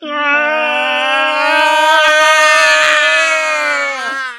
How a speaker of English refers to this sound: So let's give a ascending yell on 3. 1, 2, 3.